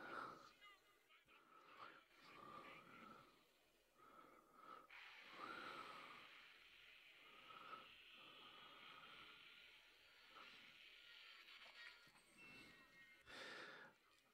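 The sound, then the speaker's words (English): A dragon in a film scene takes a sharp, loud intake of breath among a series of heavy, breathy snorts and hissing exhalations. The sounds are rasping, with no clear speech. “We get Brother Jacobus and then that famous intake of breath.”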